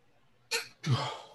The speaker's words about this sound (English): Jesus, I'm sneezing. My sinuses are terrible today.